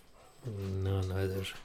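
A dog, Puddin, George Jones's dog, gives one drawn-out, low moaning vocalization lasting about a second, fairly loud, with quiet around it.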